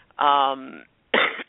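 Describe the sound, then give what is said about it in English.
Two fairly loud bursts from a person with a cold: a drawn-out, voiced, rasping cough like a heavy throat clearing, then after a short pause a brief, breathy cough. “I'm going to be coughing a lot”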